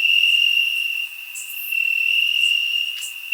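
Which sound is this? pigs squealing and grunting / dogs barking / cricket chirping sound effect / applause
cricket chirping sound effect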